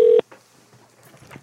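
A single loud telephone keypad tone beeps briefly at the very start, then cuts off into faint, quiet line noise for the rest of the moment.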